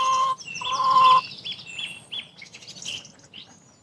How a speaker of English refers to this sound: There's a chicken.